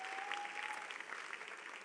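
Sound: audience clapping in praise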